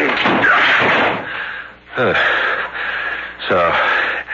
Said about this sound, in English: Door is locked. Break it in.